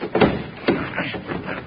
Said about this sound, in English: Quit asking fool questions and slide that door back,